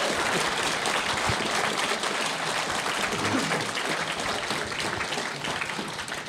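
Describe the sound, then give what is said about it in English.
An audience at a panel discussion claps together in a sustained round of applause for itself, a dense, steady patter of many hands that holds at an even loudness for several seconds before easing slightly at the end. “Well, we're going to give you guys a chance to ask some questions now, but please just give a round of applause to our audience.”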